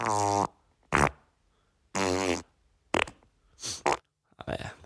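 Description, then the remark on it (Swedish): A series of six loud fart sounds separated by short silences: two long, buzzy, tonal ones mixed with shorter sputtering bursts, ending in a raspy, noisy blast. “Det är en folkefis.”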